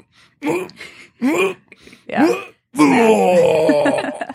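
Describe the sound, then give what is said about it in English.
A voice imitates a cat retching up a hairball at 2 a.m.: three short, strained groaning heaves, then one long, loud, wavering moan that trails off. “Yeah, knowing that when I wake up, I'm going to have to clean cat vomit.”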